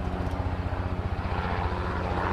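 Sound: helicopters flying overhead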